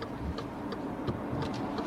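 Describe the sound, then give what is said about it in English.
A car's turn signal ticks in a steady, regular rhythm as a learner driver on her driving test indicates before pulling out, a handful of quick light clicks over a low interior rumble, with no voices. “She checks her mirrors and everything. Oh, stress. She indicates.”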